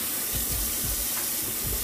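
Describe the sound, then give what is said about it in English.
Steady hiss of hot tap water streaming onto partly frozen meat that is stuck together, continuous, with low, irregular thumps as the flow splashes and shifts against it while the meat is slowly peeled apart. “So, what I do is I try to run some hot water on it and just slowly, like, peel.”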